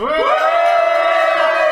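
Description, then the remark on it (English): A live audience cheers loudly and steadily to vote for the film Cocktail, a sustained wash of shouts and whoops from many people, with no speaking over it. “I'm going to ask you to cheer if you want Cocktail to win, and then cheer if you want Coyote Ugly to win.”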